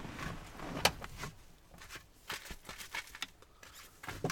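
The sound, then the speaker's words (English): Someone climbs out of a car: a sharp door clunk rings out early, followed by shuffling, fabric rustle and small clicks, with another faint knock near the end. Fairly quiet, no talking. “I gotta do it. Get out of the car. Look for it.”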